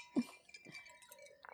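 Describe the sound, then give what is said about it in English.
A few light glass clinks ring out, bright and short with a brief shimmer, as glasses touch in a toast with no talking over them. “Yeah, cheers. Welcome back. Cheers. There we go.”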